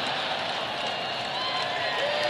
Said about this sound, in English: This is the part you hear the cheering in the background, and I guess that they're referencing.